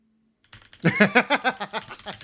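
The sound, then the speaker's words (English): Rapid, steady keystrokes on a loud computer keyboard, each press a crisp clack in an even run of about a dozen strikes, with no talking. “Ooh, listen to those gentle key noises.”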